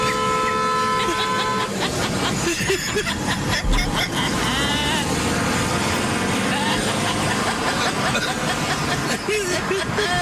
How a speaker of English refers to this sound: He's trying to pull over now. But to pull over, he's got to honk at everybody.